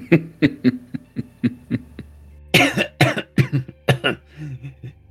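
A person coughs repeatedly at close range, starting with a quick rhythmic series of short, throaty hacks and building into several harsher, louder coughing bursts near the end.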